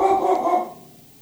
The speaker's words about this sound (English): The little orange concierge dog. This could be the dog barking interlude.